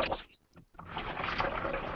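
A coffee maker hisses and gurgles with a broad, rushing, bubbling noise that dips briefly near the start, then surges back and holds steady. No one speaks.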